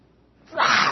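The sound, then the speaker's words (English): A person imitates a lion cub's roar: after a brief quiet moment, one short, breathy, raspy burst of voice, fairly loud and hissy rather than deep. “that's my lion impression.”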